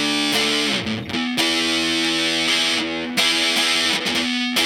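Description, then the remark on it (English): A semi-hollow electric guitar played through a fuzz pedal, thick and loud, with sustained, heavily distorted chords struck a few times and left ringing, alone with no talking. “I mean, you get a broad range of tones, and I've been noticing that it really holds up under... under some fuzz.”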